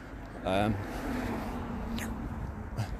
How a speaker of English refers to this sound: And yeah, here's a car. I guess I'll let it go past.